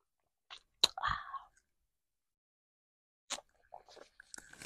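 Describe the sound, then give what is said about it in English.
Quiet slurping sip of hot tea, heated up at home, a short airy draw lasting under a second, followed by a pause and a few soft mouth and swallowing noises. “I heated up my little tea because hold on, y'all, I actually need to sip.”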